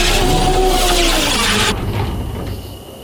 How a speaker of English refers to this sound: With the power cell in place, she sparks a few wires together, and the ship hums to life.